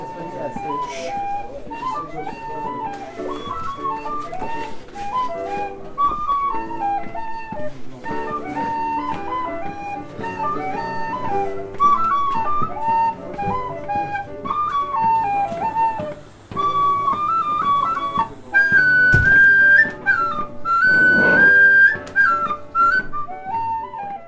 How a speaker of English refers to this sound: I'm 10 years old and I'm from Tulla. I play the tin whistle